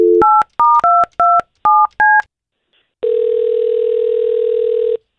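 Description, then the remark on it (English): A telephone number being dialed: a quick series of seven dual-tone keypad beeps, each a clean sharp tone, followed by a brief pause and then a steady, loud ringback tone lasting about two seconds. “We're going to try to call her and see if we can find out what happened.”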